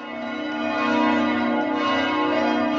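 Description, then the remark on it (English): Church bells ring out continuously in front of a church in Vienna, a dense, sustained wash of overlapping tolls with a rich, humming resonance, fairly loud and steady with no voices over them. “You started saying, oh, the church bells are going off.”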